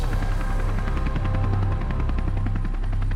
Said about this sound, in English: It was the light of a police helicopter. An amplified voice pierced through the air, shouting orders.